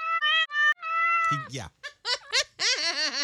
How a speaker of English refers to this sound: Yes, he got meowed out a lot. He got meow, meow, meow, meow, meowed.